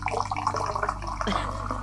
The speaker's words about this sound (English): Slowly pouring a can of Fanta next to the microphone. I hope you splash it all over your microphone.